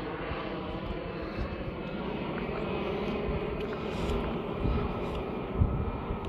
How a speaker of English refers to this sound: Inconsiderate of EasyJet to be flying a plane during podcast hours, but whatever.